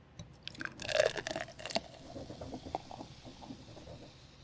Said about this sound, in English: Let's try this. Ooh, I hear it fizzing. Nice. I'm going to try pouring.